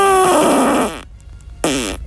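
The tenth in a series of farts: a loud, long fart with a buzzing tone that slides downward for about a second, then a short pause before a briefer second burst, like an encore.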